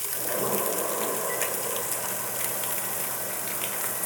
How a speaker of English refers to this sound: I'm gonna turn my overhead hood on right now, just so it's not super smoky, but you'll still be able to hear me.